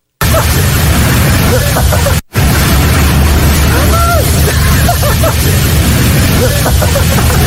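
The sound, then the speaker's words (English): Loud, constant rushing floodwater surges around a city bus, a dense roar filling the whole clip, with faint voices and laughter of passengers on the bus mixed underneath. “It sounds like they're whitewater rafting, not riding a city bus.”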